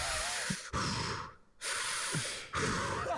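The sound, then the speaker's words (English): A man imitates heavy, rasping breathing with a blanket pulled over his face: three long, loud, airy breaths drawn in and pushed out, with brief pauses between them and no talking. “And he's just doing this breathing where he's just going.”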